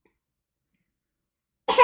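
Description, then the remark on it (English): A newborn baby's sharp, sputtering, choking cough bursts out at the very end, sudden and fairly loud after nearly two seconds of silence. “Sorry, current newborn over here choking to death.”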